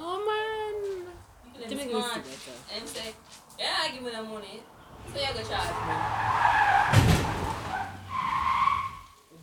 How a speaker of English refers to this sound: Guys, hold on. There was an accident literally right out my gate. Hold on for a second.